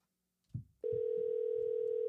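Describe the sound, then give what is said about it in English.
A soft click, then a steady ringback tone on an outgoing phone call begins and holds continuously at an even, loud level through the handset with no one talking. “Let's call him here and see what happens.”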